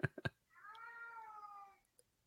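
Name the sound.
cat meowing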